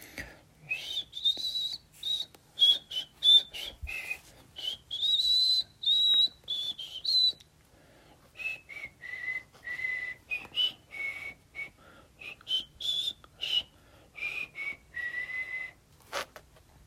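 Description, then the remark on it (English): A person whistles a slow, melodic hymn tune, the pure tones rising and falling in phrases with brief breaths between them, no other sounds around. “I forgot if I was supposed to whistle or sing at the beginning of these”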